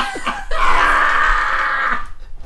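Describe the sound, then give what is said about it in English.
A couple of quick throaty catches, then a loud, strained hiccup drawn out into a raspy, burp-like gush of air lasting over a second, during a spell of hiccups that has gone on for about ten minutes, with no talking over it. “Well, how long have I've been hiccuping for 10 minutes”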